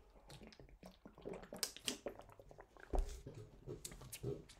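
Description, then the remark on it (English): Someone drinks water, with quiet wet sips, gulps and small mouth clicks spread irregularly over a few seconds. No one talks. “I need to drink water for this one.”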